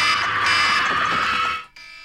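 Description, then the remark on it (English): A loud, harsh alarm tone from a phone's clock app blares continuously for about a second and a half with a dense electronic buzz, then cuts off abruptly, leaving a brief quiet tail. “How did you find your alarm noise that fast? You go to your clock.”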